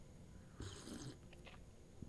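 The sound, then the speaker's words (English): A single short slurping sip of a drink, a breathy hiss lasting about half a second, followed by a couple of faint mouth sounds and a soft swallow in otherwise quiet surroundings. “And it's taking a sip of the old drink there.”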